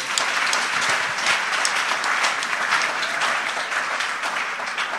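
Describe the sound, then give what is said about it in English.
A church audience claps for the Lord together in sustained, dense applause, a steady crackling roar of many hands that holds evenly loud for the whole stretch with no talking over it. “Go ahead and give the Lord a clap.”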